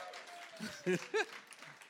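Steady, soft applause from an audience for a volunteer who has just completed five repetitions, a dense patter of clapping that runs throughout, broken by two short voiced whoops or cheers partway through.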